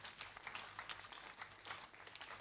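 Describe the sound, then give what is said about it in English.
An audience claps steadily as a clap offering for the Lord, a dense wash of many hands, the applause holding at a fairly even, moderate level throughout with small surges, and no voices standing out. “Another clap offering for the Lord.”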